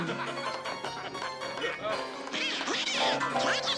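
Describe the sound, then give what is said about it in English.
A cartoon duck voice quacks and jabbers unintelligibly in rapid, squawky bursts, loud, with busy background sound and music running throughout, in a scene at a dueling piano club. “Does anybody understand what this duck is saying?”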